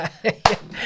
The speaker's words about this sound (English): That's not me clapping. That's me clapping.